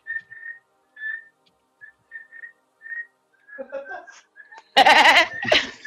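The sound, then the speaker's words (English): A person whistles the Pledge of Allegiance in a series of short, halting phrases, following the rhythm of a spoken recitation rather than a melody. Loud laughter erupts at the end. “I didn't know you could whistle something that only has spoken word.”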